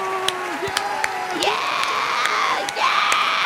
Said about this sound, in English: Oh, is that the arena applauding again? That was the arena, yeah.